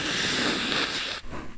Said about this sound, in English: I mean, fucking, I was told everybody's going to sniffle or blow my nose into the fucking thing. So here you didn't do it once, did you?